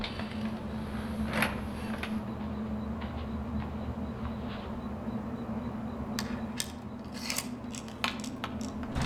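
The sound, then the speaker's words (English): Sharp, irregular scraping and scratching bursts at a motel room door against a steady low hum, growing busier toward the end, with no one speaking. “Something scratching outside the motel room door.”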